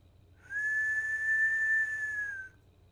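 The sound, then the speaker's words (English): A man whistles a single steady note held for about two seconds, clear, with no talking around it and only a faint low hum in the background. “he does this little whistle thing”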